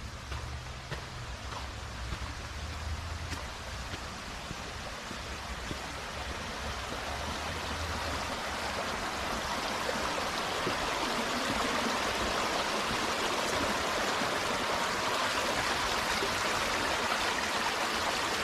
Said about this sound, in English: We have like a nice little brook flowing down in the middle of the trail.